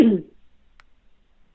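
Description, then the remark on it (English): A single short, gruff throat clearing bursts out at the very start, fairly loud, then gives way to near silence broken only by one faint click. “I'm not going to say it yet because I, excuse me, let me clear my throat.”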